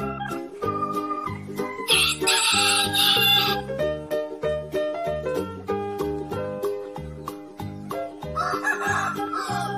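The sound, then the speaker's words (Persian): A rooster crows in loud, drawn-out calls over a bouncy, rhythmic musical backing, with a second burst of crowing near the end. “هر جوری که بخونه نمره بهش میدم 20، چون خروس خوب ما خروس بیمحل نیست.”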